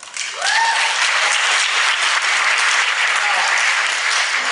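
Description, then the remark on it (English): An audience breaks into sustained applause for a point about using reason and compassion rather than faith in God, a dense steady wash of clapping that holds at full strength for several seconds, with a brief rising whistle or cheer near the start. “You folks have just applauded that point.”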